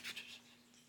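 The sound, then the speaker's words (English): A few soft, scuffing shuffles from behind the listener in a cornfield, like feet dragging over dry ground, come in quick succession and then fade into a quiet hiss. Faint, with no voices. “All of a sudden you hear shuffles from behind you.”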